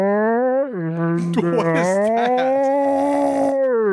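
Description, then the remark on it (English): A long, low whale-song moan with rich harmonics. It holds steady, dips in pitch, then slowly rises and swells in a continuous mournful call lasting about four seconds. “What is that? It's Whale Song.”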